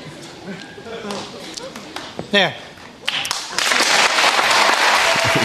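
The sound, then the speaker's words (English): A TV studio audience breaks into applause as a picture of the Pope, torn up by Sinead O'Connor, is shown pasted back together. The applause swells quickly and holds at a loud, steady roar of clapping, following a few seconds of murmured voices and a brief rising-and-falling vocal sound. “They're applauding pedophilia, everybody.”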